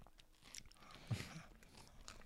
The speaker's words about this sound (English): I got a piece of Funyun that's like outside, maybe it'll still be crunchy. Mmm, nice crunch.